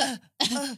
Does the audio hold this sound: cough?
yes